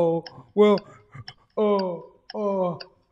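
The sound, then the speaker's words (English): A voice imitates a ticking clock with a steady series of clipped, clicky syllables, about one every half second, fairly loud with nothing else behind it. “The clock is ticking. And then what do you start hearing in the background?”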